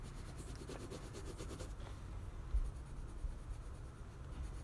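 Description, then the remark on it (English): Scratchy rubbing of an eraser removing a pencil mistake from a drawing on paper in quick repeated strokes for the first couple of seconds, then a softer continuous scraping with a low steady hum underneath. “Oh no, the pencil's taking so hard to erase.”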